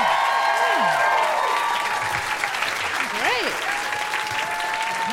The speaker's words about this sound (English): Gosh. Yeah, this show has been phenomenal. Clap it up for everyone so far.